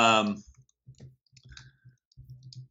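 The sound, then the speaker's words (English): Rapid, irregular keyboard typing clatters in quick, furious bursts of clicks, preceded by a brief snatch of voice at the very start. “You can hear me furiously typing away.”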